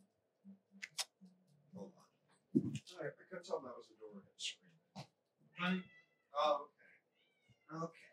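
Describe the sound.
A cat meows repeatedly for attention, a series of short, insistent cries with brief pauses between them, while people talk quietly in the background.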